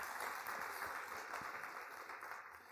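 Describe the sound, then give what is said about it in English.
A church audience applauds steadily, a dense crackle of many hands clapping that holds at an even level and eases slightly toward the end, with no voices over it. “And you can applaud.”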